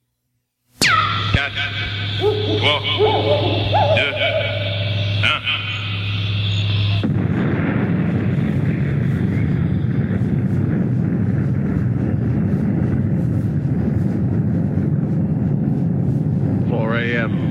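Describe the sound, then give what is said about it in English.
A space rocket launch roar: an Ariane rocket lifting off from its launching pad in French Guiana on a jungle night, August 16, 1986; a loud, steady, rumbling wall of noise that holds for about ten seconds, after several seconds of whining, warbling tones over a low hum. “The thunderous roar of an Ariane space rocket shatters the stillness of the jungle night as it lifts off from its launching pad in French Guiana.”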